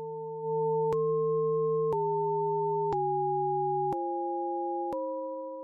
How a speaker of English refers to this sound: Here's a piece that Walkowicz calls Stellar Spin 2. This is the raw audio data. The piece is 90 seconds long, but it represents about 3 months of data from one star.